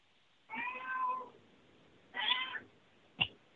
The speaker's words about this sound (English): We've got a cat that's going to get involved here. I think the cat has some input on the Bigfoot activity there. He probably does. We don't call him Ninja for nothing.